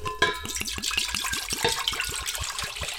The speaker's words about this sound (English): So we're going to put in our gallon, yes, of apple cider. Now, it doesn't really matter what brand. Just pick a brand of cider that you like. That's what we got to do. So we're going to pour it all in this pot.